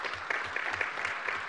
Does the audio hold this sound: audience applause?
yes